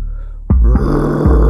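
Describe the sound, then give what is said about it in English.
A dragon roar erupts after a low rumbling lead-in, deep and rough, holding loud and steady with a couple of growling surges before it cuts off, as the dragon comes thundering down a street. “Roar, went the dragon as it came thundering down the street, crushing those fleeing in terror from their homes.”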